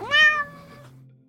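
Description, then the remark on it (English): A single loud, high-pitched meow from a small cat, rising sharply then trailing off, with no talking. “Lulu. Small cat. Big screams.”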